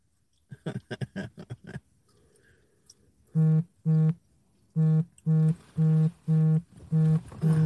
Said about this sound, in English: I'm sorry, y'all. My phone is going ham. Hold up. Okay. Phone is going ham. My bad.